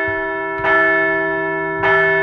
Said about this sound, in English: So let's ring the bell.